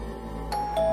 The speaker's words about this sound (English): The doorbell chimed.